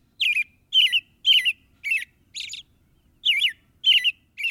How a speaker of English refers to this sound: Even now in February, when the air outside is brittle and painful, warmth rides the rhythm of an American robin.